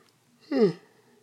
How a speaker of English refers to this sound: Sorry about that. A little yawn.